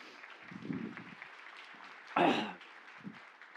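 An audience claps in a steady, moderate wash of applause for a guest invited to come up, swelling briefly into a louder burst partway through, with scattered voices murmuring underneath.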